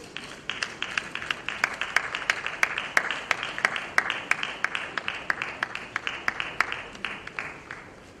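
Sustained audience applause as a professor and his wife are called up, with many hands clapping at once, sharp claps popping out above a steady rattling wash of sound, holding at a fairly even level throughout.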